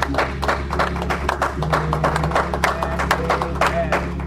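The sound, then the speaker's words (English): A church audience claps hands together in steady, overlapping applause of praise during a worship service, with a low hum underneath and some faint background voices. “Give God another hand clap of praise.”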